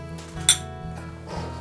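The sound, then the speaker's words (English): A single bright clink of glasses tapping together in a toast, short and ringing, standing out against a steady low background hum with no voices. “Well, hey, cheers.”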